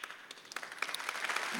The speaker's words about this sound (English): That's a good place to clap.